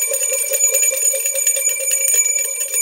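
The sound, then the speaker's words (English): A bright metallic bell rings rapidly and continuously for a few seconds, loud, with a sustained shimmering tone and no voices. “It's a Two Bell Tuesday.”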